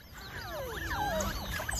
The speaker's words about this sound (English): Oh my god, I didn't know otters made that noise. What the? Oh, that's precious. What the? That little squeaky noise.